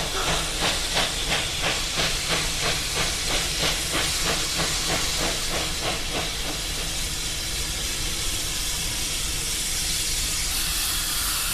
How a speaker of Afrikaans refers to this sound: Dis 'n ou wêreldse lokomotief. Ek is mal hieroor. Fucking hell. Dit moet 100 jaar oud wees. Of meer.